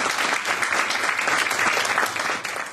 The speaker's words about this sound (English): Fresh from his victory in the Grosvenor Grand Prix back in October last year, and entering the final table with 158,500 chips, a nice round of applause for Marcus Bebb-Jones.